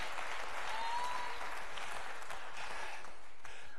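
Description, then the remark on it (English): A crowd claps their hands to the Lord in praise, steadily, a dense wash of overlapping hand claps at a constant loudness, with a faint whistle-like tone rising briefly above it. “Come on, clap your hands to the Lord and praise Him with the shout of victory.”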